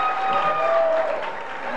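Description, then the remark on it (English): An audience clapping, coming from only one side, in a steady, dense patter that holds at an even loudness for a couple of seconds, with faint sustained tones running underneath. “Yeah, you see, the clapping is coming from only one side.”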